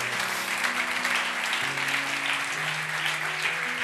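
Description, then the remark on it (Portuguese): A church audience claps loudly and continuously for Jesus, a dense steady wash of applause, with sustained organ or keyboard chords holding underneath. “Quem crê, dá um glória a Deus e aplauda Jesus bem forte.”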